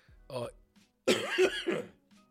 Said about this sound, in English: I have no idea what is happening with my throat today, man, but I am coughing like a fucking pensioner. So I apologise, team.